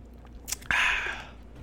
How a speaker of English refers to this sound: I ain't give y'all my famous sip last week.